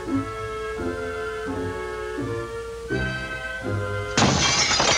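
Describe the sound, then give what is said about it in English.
A steady, tonal musical bed with a rhythmic low pulse plays. A heavier thud lands midway as a man shuts his front door, which slams without springs, and then a loud, bright burst of window glass shattering bursts in near the end. “You shut the door, and the door's just going to slam, and the window's going to break.”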